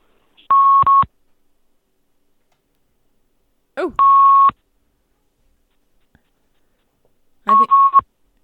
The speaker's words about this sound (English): I think Sean put me on hold again. Is that beeping loud? I'll turn the beeping down.